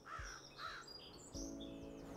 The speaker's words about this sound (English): Soon the crows in the oak trees that had lost their leaves started cawing, and the wind picked up. I have to admit it was eerie standing in the cemetery on that cold, windy day in late fall, even if it was daytime.